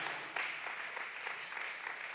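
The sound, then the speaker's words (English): Steady applause during a church sermon, a dense crackle of many hands clapping at an even level throughout, with no voices over it. “I'm applauding you because you're blessed.”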